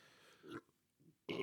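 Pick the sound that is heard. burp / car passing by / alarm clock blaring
burp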